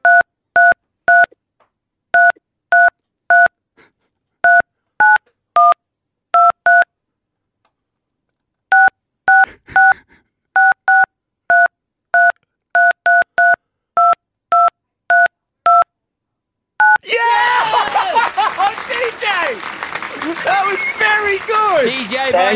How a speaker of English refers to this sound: play Jingle Bells on your phone keypad. Here we go.